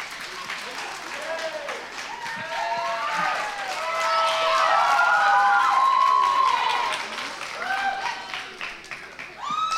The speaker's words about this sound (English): But, no, you don't need to clap for me. No, please don't. Oh, no.